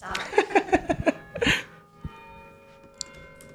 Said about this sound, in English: Long bells.